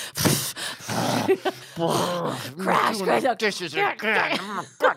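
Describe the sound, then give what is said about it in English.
Someone imitates angry, heavy breathing as a dramatization: a loud burst of harsh huffing, then a run of strained, groaning exhales that rise and fall unevenly over several seconds. “You can't, like, have this reasonable conversation when you're already, like, slamming things around and breathing heavily.”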